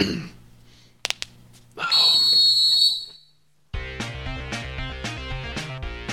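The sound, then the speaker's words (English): A couple of sharp clicks and a shrill, hissing whistle blast give way to loud, energetic hype music with a driving rhythmic beat that plays on without any talking. “Honestly, my music gets me hype. I'm going to leave it a little louder this week.”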